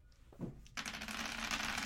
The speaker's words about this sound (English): And one dice, of course, rolled away from me.